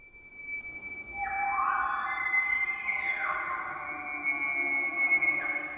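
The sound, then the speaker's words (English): A bull elk bugles: a loud, high-pitched whistling call that rises, holds for several seconds with a reedy, harmonic tone, then slides and fades, with overlapping tones layered underneath. “Bulls make this sound to intimidate other bulls and attract cow elk.”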